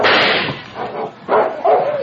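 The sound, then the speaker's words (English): A dog barks in a quick series of loud, harsh yaps with brief gaps between them, and no voices accompany it. “Get back there, you mutt.”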